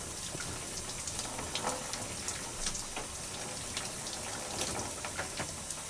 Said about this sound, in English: Alright, so I'm about to begin to rinse out the shampoo I just applied on my scalp.